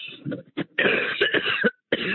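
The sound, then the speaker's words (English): A loud fit of coughing: several harsh, rapid coughs in quick succession, a brief pause, then another cough starting up, with raspy throat-clearing texture and no talking. “I'm going to cough to death.”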